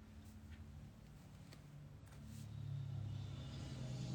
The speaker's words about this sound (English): As the car spins by to confirm it all,